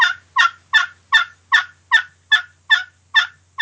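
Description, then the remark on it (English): A turkey gobbler yelp played on an old glass friction call that is not roughed up: about ten evenly spaced, raspy yelping notes in a steady rhythm, fairly loud, with no talking. “There's your gobbler yelp.”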